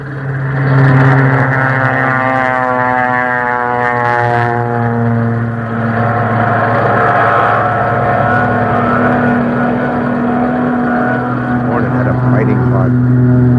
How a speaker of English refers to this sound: Yeah, look at all our planes. Torpedoes, bombers, fighters. All of them going up. Good luck, you guys!